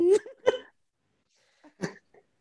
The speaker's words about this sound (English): And I, what was that? I farted, sorry.